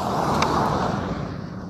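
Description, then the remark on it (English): A car rumbles past, a steady, fairly loud low roar of engine and tire noise that eases off slightly toward the end, with no voices. “Stupid cars.”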